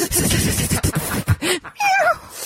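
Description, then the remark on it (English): After a burst of rough, noisy rustling, a person imitates the meow a cat made: a short arching mew followed by a higher, wavering, drawn-out meow, clear. “That's the noise it made.”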